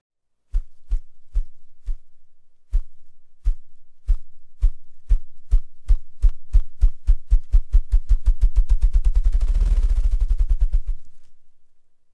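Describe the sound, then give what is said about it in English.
Deep, muffled wing-drumming thumps made by a bird rapidly rotating its wings forward and backward, air rushing beneath them. They begin slowly and spaced apart, then accelerate steadily into a rapid, blurred roll of up to 50 beats in 8 to 10 seconds before cutting off, all fairly loud with no voices. “The deep thumping sound starts slow and builds to a crescendo as the bird rapidly rotates its wings back and forth.”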